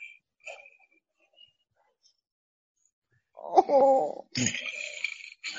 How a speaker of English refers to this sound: That does not sound like a dog. That sounds like a lion. Oh, well, you know, I had his voice box altered to make him sound like a lion, and perhaps he's a little miffed about that as well.